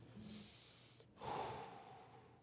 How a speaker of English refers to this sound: Breathing it in. Mm. Just being here, basking it in the moment.